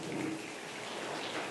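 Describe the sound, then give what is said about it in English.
A dense, steady patter of many people in a sanctuary snapping fingers and rubbing hands together, blending into a continuous rain-like hiss without pause. “I'd like this section to snap your fingers.”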